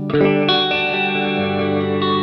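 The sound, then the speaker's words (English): An electric guitar strums a few sustained chords through a Keeley Caverns V2 reverb pedal, a washy tone, each strike ringing out and blending into a lingering reverberant tail. No talking, just the guitar, moderately loud. “And the thing is, let's have some reverb courtesy of the Keeley Caverns V2.”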